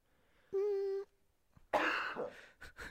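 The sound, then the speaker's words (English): A brief steady hummed tone, then one loud, harsh cough with a rough trailing rasp, followed by a couple of short, quieter coughing bursts. “What a flawless cough.”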